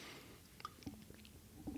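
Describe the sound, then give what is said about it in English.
Someone takes a quiet sip of a drink, with soft wet mouth clicks and a small swallow, no talking. “Sorry, I was taking a sip.”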